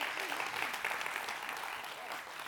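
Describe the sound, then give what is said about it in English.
A church audience breaks into sustained applause for the grace of God during a sermon, a dense wash of many hands clapping steadily, with faint voices murmuring underneath. “You could clap for that.”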